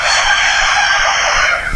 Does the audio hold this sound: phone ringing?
no